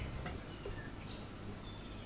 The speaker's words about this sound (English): And it's the first episode of the year recorded with the windows open here, so you can probably hear birds. Can we hear the birds?